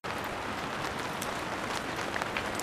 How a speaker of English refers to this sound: Do you hear that? That's rain. Now, maybe you don't need my help to hear the rain.